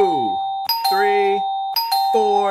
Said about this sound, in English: So I'm gonna hit this bell 5 times if I could find it. Hold on, let me get it together. 1, bing bing. Wait, there it is.